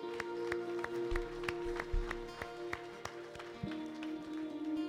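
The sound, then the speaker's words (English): An audience gives God a hand clap, clapping in a steady, even rhythm, sharp beats repeating about three times a second over a sustained, droning musical chord, with no voices standing out. “Come on, everybody give God a good hand clap.”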